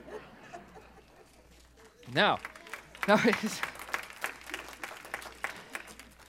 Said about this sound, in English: Now you're going to make me feel guilty for having a cheap applause line.